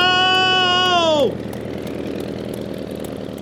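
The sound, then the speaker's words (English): The engine of the Wright Flyer number one, piloted by Orville, starts up for the first manned airplane flight: a loud, steady high whine that suddenly swoops down in pitch, giving way to a low, continuous chugging rumble of the running engine. “Fire up the engine! The plane is starting to move.”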